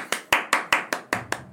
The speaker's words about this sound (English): And nobody else is clapping. We're just applauding ourselves.